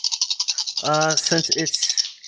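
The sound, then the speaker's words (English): Seven dice rattle and clatter quickly and steadily as they're shaken for a roll to banish a spirit in a tabletop role-playing game, a bright rapid rattle running the whole time, while a voice briefly speaks over it midway. “So that's 7 dice that I'm rolling here.”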